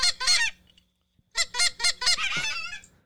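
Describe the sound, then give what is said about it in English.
A goose call honks loudly: two harsh calls, a short pause, then a rapid run of four or five more honks ending in a drawn-out, rasping call. No one speaks. “So I make my my mouth look like I'm the one that's making the goose call.”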